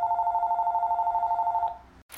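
A telephone rings with a steady, rapidly pulsing electronic trill for nearly two seconds, then stops abruptly as an answering machine picks up, followed by a short click and a brief burst of noise.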